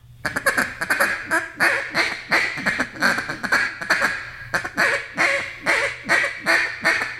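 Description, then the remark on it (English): A duck call blown in a hiccup pattern to finish ducks as they turn and line up with the hole: quick, clipped quacking notes repeated in a steady, bouncing rhythm, loud, with no talking. “As soon as they fixing to make that turn and they get lined up with the hole, I'll start hiccuping at them and maybe throw a couple feed calls in, just you know, some bottle single feeds.”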